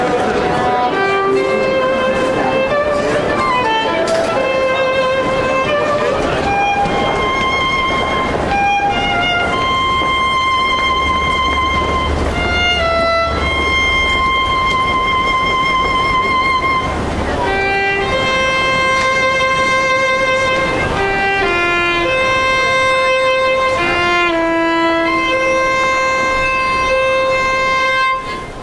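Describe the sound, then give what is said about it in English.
A solo violin plays a slow melody of long, sustained notes in a subway scene from a TV show, with a low rumbling train noise swelling underneath partway through. “here's a little taste of her violin playing that makes this guy named Hap, a doctor, hear it and just run all over the subway system.”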